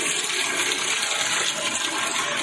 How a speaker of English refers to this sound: Stop it. Stop. Somebody turn the water off. Turn off the fucking water. It's up to my ears now.